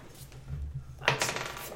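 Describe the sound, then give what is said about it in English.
Dice clatter across a hard tabletop in a short burst of sharp clicks that quickly settle. The rattle is fairly quiet, with a low hum underneath and no talking. “Or no, I rolled the wrong dice. Let me try it with the right dice.”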